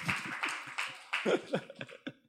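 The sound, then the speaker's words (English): A crowd at an evening event cheers and claps for the speaker's wife, with a steady wash of applause under scattered whoops and shouts that rise and fall in short bursts before tapering off. “Can we cheer for her and her beauty?”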